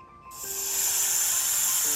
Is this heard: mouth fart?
no